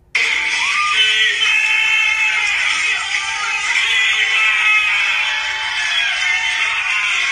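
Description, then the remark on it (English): A man strains and grunts loudly in a long, drawn-out effortful cry that holds steady for several seconds, intense, as he yanks a chain to break it off a plank, with no clear metallic clanking and no speech. “Okay, by the way, he's grunting because he's literally yanking the shit out of this fucking chain to break it off the plank, and he's having so much trouble doing it.”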